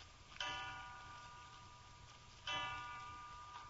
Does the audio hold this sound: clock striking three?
yes